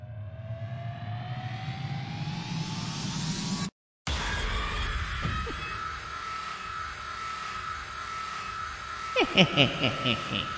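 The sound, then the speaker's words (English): A jump scare sound effect: a whining tone rises steadily for a few seconds, cuts to a split second of silence, then slams into a loud, harsh droning blast with a few sharp crackles near the end. “It like revs up and then it's just like a big loud noise.”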